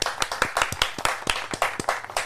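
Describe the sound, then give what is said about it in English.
A short burst of applause welcoming a guest on the show Paco's Place, many hands clapping in quick, irregular succession at moderate volume, with no one speaking over it. “Please, a big round of applause for my good friend”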